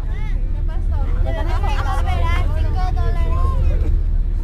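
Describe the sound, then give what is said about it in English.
A bus drives under a border checkpoint into Mexico with a steady low engine rumble, while several voices talk and murmur continuously over the drone throughout. “When the driver comes back, we drive right under the checkpoint with the giant red letters that say Mexico.”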